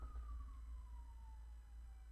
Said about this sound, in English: There's a siren. The RCMP is coming for me. I'm just kidding.